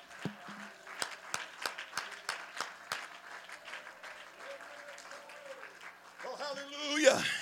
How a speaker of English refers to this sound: Let's clap our hands unto the Lord tonight.